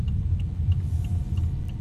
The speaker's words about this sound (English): So we're driving all on electric right now. It says on the heads-up display, E-Drive. I presume it'll just kick automatically over to the petrol engine if it needs to.